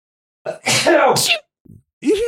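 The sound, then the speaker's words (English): A single loud sneeze, a short wheezy intake bursting into a harsh, noisy blast, followed by a brief pause and a groaning voice. “I have to sneeze. Fuck, I hate when I have to sneeze.”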